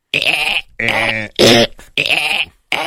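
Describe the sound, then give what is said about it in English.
Someone vocally imitates dolphin lovemaking noises: a series of five loud, strained, nasal squealing bursts, each about half a second long, separated by brief pauses, with a bleating, high-pitched edge. “But you could even hear it in his dolphin lovemaking noises that he was not feeling well.”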